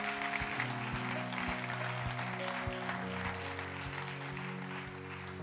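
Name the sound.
audience cheering and applause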